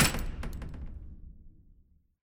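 A quick run of about five sharp knocks on a metal door, hard and resonant, with a booming low echo that rings out and fades over the next second or so.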